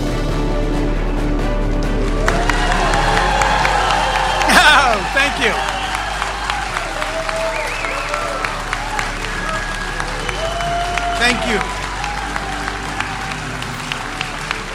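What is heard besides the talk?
audience applause and cheering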